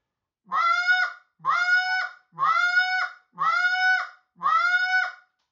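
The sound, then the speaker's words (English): Five drawn-out moans from a goose call, made by pushing air into it with a 'ha' breath, each held under a second, evenly spaced with short pauses between. Loud and clear, with no talking. “why that's important, learning to do that, taking that moan”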